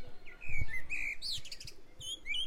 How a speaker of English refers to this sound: That's a male blackbird. Very clear, isn't it, the sound that they make?